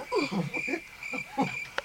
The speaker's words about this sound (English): It's got a bit awkward. The show was going all right. I need the crickets.